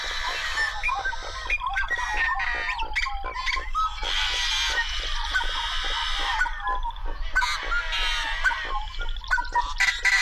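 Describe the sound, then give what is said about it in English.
Harsh, buzzy, strained calls of yellow-headed blackbirds rasp over a dense chorus of chattering and clucking birds in a cattail marsh, a busy, continuous marsh din with no talking. “Yellow-headed blackbirds just have sort of otherworldly sounds, and they're quite common in some of the cattail marshes.”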